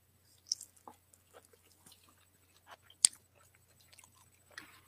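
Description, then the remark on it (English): Sticky, wet chewing of a salted caramel-covered treat, with scattered soft crunches and one sharp crisp bite, the mouth sounds quiet and irregular with no talking. “That one is a little chewier, but it's still got, when you bite into it, it's still got that little crispiness.”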